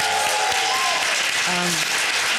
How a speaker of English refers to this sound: Yeah, can we actually do an extra round of applause for Matt? Because he is phenomenal.